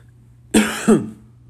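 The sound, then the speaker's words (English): A loud double cough: two quick harsh bursts about a third of a second apart, standing alone against a quiet background hum. “There's no editing right now, so you just heard me cough.”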